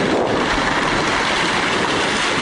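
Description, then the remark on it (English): Two giant sequoias fused at the base crash to the ground across a trail in Sequoia National Forest, recorded on a video camera, heard as a loud, continuous roaring rumble with dense crackling that holds steady for a couple of seconds, with no voices. “A giant sequoia, actually two giant sequoias, fused at the base came crashing to the ground.”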